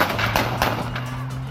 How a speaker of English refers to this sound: I think that's the quote shots fired unquote, because it sounded a lot like gunfire, but I think it was just the car running over the cones or whatever.